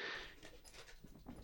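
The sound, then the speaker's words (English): An excited female puppy sniffs and pants in quick, breathy bursts, fairly quiet, with a faint whimper-like edge and no talking. “Sorry, my puppy's gone absolutely mad here.”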